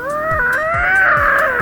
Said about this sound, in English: It sounds like a really pissed off cat.